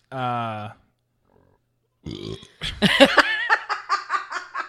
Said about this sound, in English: That was such a weak sauce burp. I know. It's an embarrassing burp.